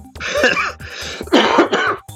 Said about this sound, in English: Sorry, I'm better, but the cough's still here. Thankfully, I've done a lateral flow test, and I know that the cough is just a cough.